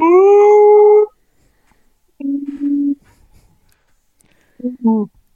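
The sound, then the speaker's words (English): A man voices two long, drawn-out wolf-like howls, loud, with a steady wavering pitch, followed by shorter, lower vocal sounds after brief pauses, calling with his face stuck out of the opened window of a blind. “I gave two of the biggest, longest howls I could give, and I closed that window up, and I went, you are the loudest wolf caller I've ever heard.”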